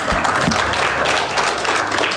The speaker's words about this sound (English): If you guys are going to clap, do it right.